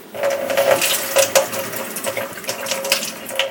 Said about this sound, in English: And rinse off my hands here.